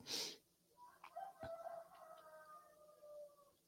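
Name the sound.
roosters crowing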